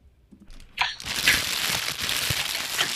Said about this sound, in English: Why the hell do you do that? The crumbling of the paper? Yeah. It means I'm going to another topic. I'm talking about something else.